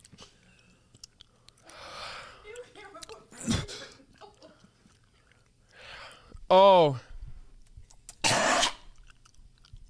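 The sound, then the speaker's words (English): Wet chewing comes in short bursts while someone mashes the world's hottest gummy bear, interrupted by a sharp breathy exhale and a loud strained vocal cry before a final rough, coughing gasp. “EATING THE WORLDS HOTTEST GUMMY BEAR”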